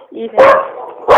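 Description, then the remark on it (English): A dog barks twice at an office, loud, each sharp bark rising out of a lower whine-like tone, with a short gap between them. “You can have the dogs at the office until the postman comes.”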